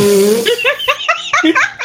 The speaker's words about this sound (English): I'm sorry. Sexy stuff makes me burp.